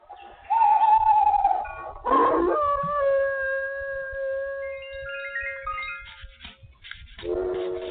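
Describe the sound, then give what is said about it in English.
Nighttime sound effects: hooting calls like an owl's, followed by a long, sustained dog howl with drawn-out wavering tones. Fairly loud, with no talking. “Those are sounds in the night when the owl takes flight, in the old dog days at the moon, when the stars shine bright in the pale moonlight.”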